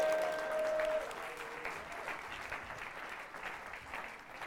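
crowd, audience round of applause

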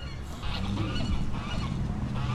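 bird, geese honking

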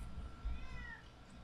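animal, cat meowing

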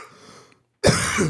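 human body sound, cough into the microphone

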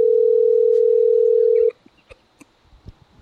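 signal or alarm, telephone line ringing tone

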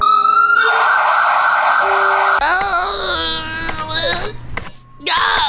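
sound effect, ambulance siren sound effect

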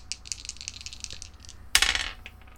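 household object, dice being rolled

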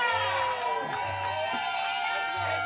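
crowd, audience cheering

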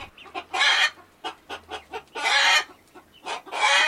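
animal, hen clucking

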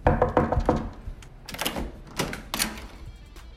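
household object, knocking on a door

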